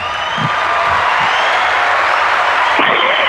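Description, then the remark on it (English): A crowd gives a round of applause, dense overlapping clapping that stays loud and steady for the whole few seconds, with a faint hint of cheering mixed in and no one speaking. “We give you a round of applause.”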